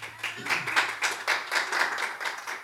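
A group claps hands together as praise to the Lord in a steady, fairly quick rhythm, the sharp slaps blending into a continuous patter with no one speaking over it.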